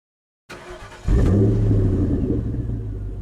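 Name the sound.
car engine revving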